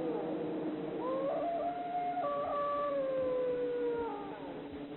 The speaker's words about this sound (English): A wild dog,